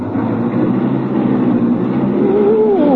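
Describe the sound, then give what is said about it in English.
A loud car engine rumbles steadily, then its pitch climbs as it revs and accelerates to about 50 miles an hour toward the end, in a car with no first or second gear. No voices are heard. “We're going 50 miles an hour and I haven't shifted into high yet.”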